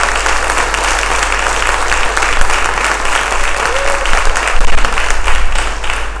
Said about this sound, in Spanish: Si le vas a dar un aplauso al Señor, dáselo fuerte. Si le vas a dar un aplauso a Dios, dáselo fuerte. Él lo oiga.